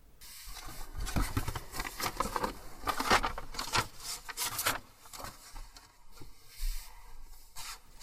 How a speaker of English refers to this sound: As Petscop 7 begins, we find ourselves back in the quitter's room with Paul checking things out before we hear him seemingly shuffling through notes he's taken.